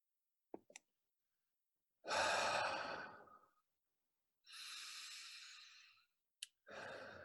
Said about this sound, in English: We're going to take three breaths together at our own pace. Deep breaths in and find some opening. Find some opening in your back as you breathe.